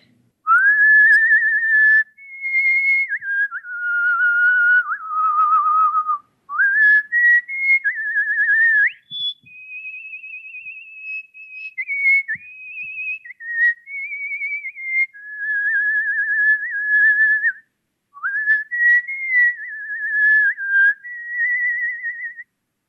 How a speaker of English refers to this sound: I do it for fun. I whistle for fun all the time. So, you know, when I'm walking to class or walking along the street, I whistle just whenever I want to, which I think is a great thing about whistling.